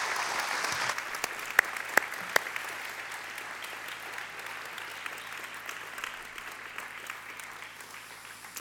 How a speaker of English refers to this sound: And so we're going to, on the count of three, we honor you and clap and thank God for him providing these gifts to us. Okay, ready? One, two, three. We honor you.